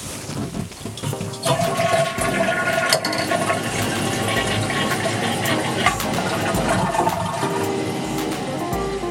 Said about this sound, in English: And then there's nothing else to say, but don't forget to flush.